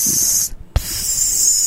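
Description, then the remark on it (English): A voice imitates the hiss of urinating: a steady, bright hissing breath, broken by a brief gap and a small click, then the hiss resumes and holds to the end. “That's, what's the sound of pissing? There's another letter. Well, but that's P S S S S S.”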